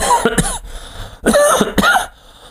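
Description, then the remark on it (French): Two harsh coughing bursts separated by a brief pause, each with a rough, throaty rasp, loud and without any speech. “je vous tousse d'en face.”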